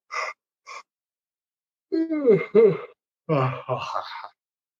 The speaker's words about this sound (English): Interesting. Yes, it's the yawn reflex. And I bet that opens up the tear ducts, doesn't it? It does. It does.